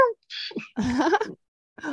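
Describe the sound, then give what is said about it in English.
Someone does a drawn-out, whiny cat-like meow with a wavering pitch, preceded by a few short breathy vocal noises and followed by a brief pause. “It's trans girl culture, just meow.”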